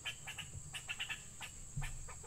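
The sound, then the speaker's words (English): Bird noises during a scuffle, quiet: short chirps and squeaks come in quick, uneven bursts over a steady high-pitched hum, with a dull thump near the end. No one speaks. “So, is he fighting a bird?”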